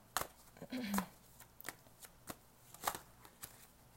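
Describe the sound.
A deck of cards being shuffled during a card reading, a series of crisp riffling snaps and soft flicks at irregular intervals, with a brief low voiced murmur early on.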